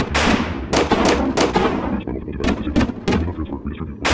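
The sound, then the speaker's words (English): A rapid, irregular volley of loud gunshots fired at the deck, around seven or eight sharp cracks with a dense rumbling background between them and a short lull midway before the firing resumes. “Quick, shoot the deck.”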